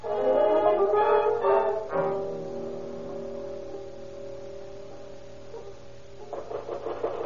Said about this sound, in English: Hey, you drunken bum, stop snoring, will you?